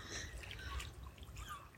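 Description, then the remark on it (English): Soft water dripping and trickling in a quiet outdoor setting, a faint, steady patter over a low rumble, with no voices present. “Eagles singing. And the gulls. The water. The sun.”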